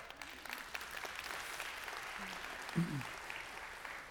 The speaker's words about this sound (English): You're applauding because you know how much work that woman has done.